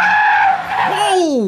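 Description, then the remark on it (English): A loud screech of car tires skidding as a parked car appears suddenly in the road, a sustained high squeal that wavers and then slides downward in pitch over about a second and a half. “Speaking of distractions, I need to keep my eyes on the road. That parked car came out of nowhere.”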